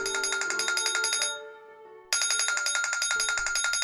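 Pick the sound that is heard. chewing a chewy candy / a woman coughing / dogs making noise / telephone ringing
telephone ringing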